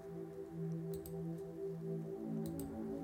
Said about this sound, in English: Let's gather the cards.